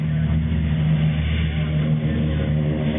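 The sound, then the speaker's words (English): An airplane engine hums in a steady, low drone, holding an even loudness for the whole stretch with no voices. “He was down on his stomach, getting a drink from the stream when he heard an airplane's hum.”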